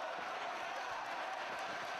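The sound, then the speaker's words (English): A subdued gymnastics arena crowd in 2007 fills the space with a steady murmur during a giant swing, with only light scattered applause mixed in and no single voice standing out. “Have you ever seen a crowd this quiet for the giant swing?”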